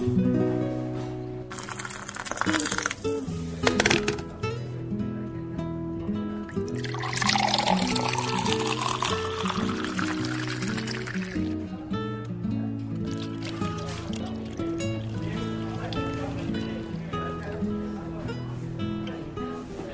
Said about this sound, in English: That is coffee pouring in the sounds of Hawaii, if anyone's wondering.